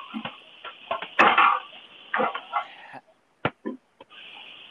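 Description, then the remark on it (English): Dishes clatter and clink in a sink as a man washes his dishes, with irregular knocks and scrapes, a louder burst of rattling near the start, then scattered sharp taps over a faint running-water hiss. “As he's doing his dishes.”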